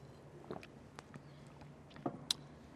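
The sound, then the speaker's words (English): A speaker takes a quiet sip of water during a church sermon: a few soft mouth clicks and a light clink or swallow spread over a couple of seconds, with no talking. “as I take a sip of water.”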